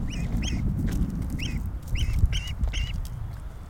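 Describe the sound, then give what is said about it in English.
A female duck gives about six short, high chirping peeps in quick pairs and bursts over a steady low rumble of background noise, with no voices. “Can you record that duck chirping?”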